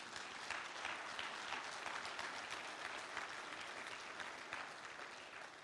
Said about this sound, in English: Give God a clap offering.